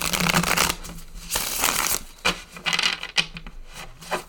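tarot cards being shuffled

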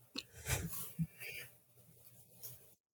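person yawning

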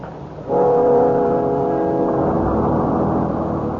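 bus engine running

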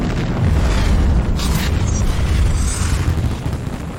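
huge explosion sound effect

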